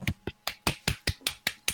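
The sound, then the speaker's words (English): Nine sharp claps in a quick, steady rhythm, each a crisp, bright smack with a short tail, moderately loud with no voices over them. “Who's clapping?”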